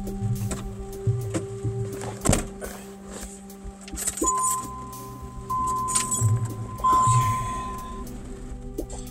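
Someone climbs into a silver hearse and places a camera on the passenger seat: keys jingle, clothing and objects rustle and clunk, a sharp thud lands midway, and steady electronic chime tones sound from the vehicle.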